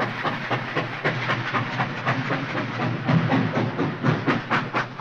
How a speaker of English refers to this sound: You're riding aboard one of 4 genuine steam-powered trains of the Disneyland Railroad. The forerunners of our trains were the celebrated pioneers of the rail, that spanned our growing nation before the turn of the century.